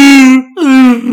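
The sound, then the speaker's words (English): A voice imitates the Wookiee Chewie's roar: two long, loud, drawn-out moaning wails with a strained, harmonic-rich tone and a short gap between them, the second starting higher and sliding down. “Do a Chewie.”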